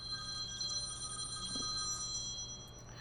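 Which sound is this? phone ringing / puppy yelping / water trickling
phone ringing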